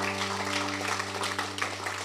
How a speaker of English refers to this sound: Let's give the Lord another clap offering. Praise God.